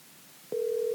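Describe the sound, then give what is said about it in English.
A telephone call to a professional bass fishing angler connecting: after a quiet half-second of hiss, a steady, clear ringing tone starts abruptly and holds unbroken to the end, fairly loud, with no voices. “Let's get him on the phone right now.”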